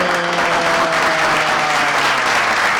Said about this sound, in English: Come get a round of applause.